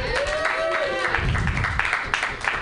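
An audience at the Mutiny Happy Hour open mic claps steadily, a dense wash of applause that stays loud throughout, with a few voices whooping or calling out over it.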